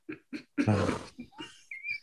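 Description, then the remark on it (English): Two short grunts followed by a loud, drawn-out squeal, then a few more snorts and high whining squeaks from a pig, with no talking over it. “That's a pig.”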